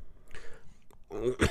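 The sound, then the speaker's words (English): A person coughs and clears their throat in two rough bursts, a softer one followed by a louder, harsher one near the end. “So while you're coughing, I'll go ahead and say the other thing here.”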